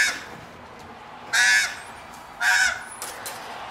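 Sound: crow cawing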